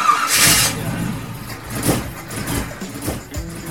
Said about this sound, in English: Hey, it sounds like it's time to swap out that old engine for something better, John. Yeah, man, but I have so much into my trans and transfer case set up already. I don't want to change those, too.